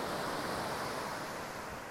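Ocean surf washing onto a beach in Aptos, California, a steady, hissing roar of breaking waves that holds at an even loudness throughout, with no voices.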